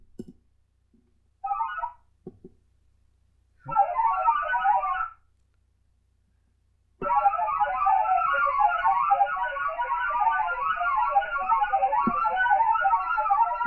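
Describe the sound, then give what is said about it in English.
A digital radio signal of rapidly hopping warbling tones, eight distinct pitches popping in random order, first in short bursts separated by silence, then a long continuous stream of busy chirping beeps. “So you, in your mind's eye, you can probably almost hear, almost see those different tones, those different frequencies, kind of eight tones popping up in various times and actually see them appearing and actually appearing in the spectrum display.”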